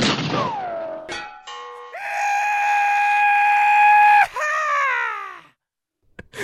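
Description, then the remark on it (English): A short comic ending sting: a sharp bang, then a long, loud, drawn-out "yeehaw" holler, cut by a second bang before it trails off into a brief pause and a final hit. “And then our ending card is bang, bang, yeehaw, which is so stupid.”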